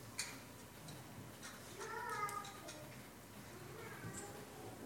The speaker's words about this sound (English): Is that an alarm clock I hear in the distance?